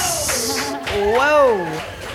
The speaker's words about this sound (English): Ladies and gentlemen, give them one more big round of applause.